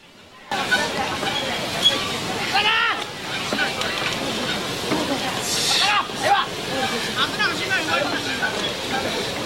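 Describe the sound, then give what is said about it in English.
A low, steady murmur of a Japanese wrestling crowd and scattered voices runs throughout, fairly subdued with no cheering or big reactions, just a constant hum of indistinct talk. “So as you can hear, traditional, as some of you may know who follow the Japanese wrestling, the crowd are very difficult to please and to make a lot of noise, but they've”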